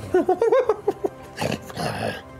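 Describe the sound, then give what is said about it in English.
A voice imitates a creature's growling gibber: a quick string of short, pitched, yapping grunts, then a rougher, breathy snarl trailing off, fairly loud. “This familiar kind of growling gibbering.”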